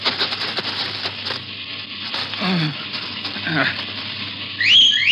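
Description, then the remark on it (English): A sharp, rising whistle rings out loudly near the end, calling riderless horses, which trot up in response, cutting through a steady crackling hiss that fills the whole recording. “And in response to the whistle, the horses trotted up to him.”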